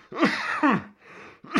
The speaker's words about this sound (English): There you go. I don't have a cough button on this setup here. So I apologize. But my coughing will be confirmation to you people of my dedication to doing this.